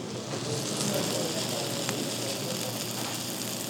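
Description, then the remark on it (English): A steaming hot sizzler platter topped with sauce, thinly sliced cabbage and carrots and shredded cheese sizzles and crackles steadily as it is carried to the table, smoking, a dense, hissing spatter of tiny pops at an even, fairly loud level throughout. “The whole thing smokes up the room and crackles as it comes towards the table.”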